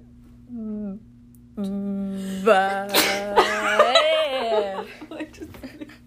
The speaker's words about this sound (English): Bless you.